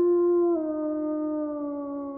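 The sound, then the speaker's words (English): A single long, loud werewolf howl as a scream turns into a howl during transformation, holding one steady tone that drops a step early on and then slides slowly lower as it trails off. “after you've screamed and it starts to turn into that howl, everything snaps.”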